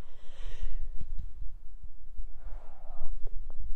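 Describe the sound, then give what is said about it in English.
Someone sneezes: a sharp, hissing burst of breath, then a second, lower and breathier burst a couple of seconds later, over soft low thumps and rumble. “Oh my gosh, why am I sneezing?”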